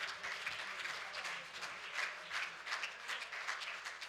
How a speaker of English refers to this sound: Why don't somebody clap your hands and thank the Lord?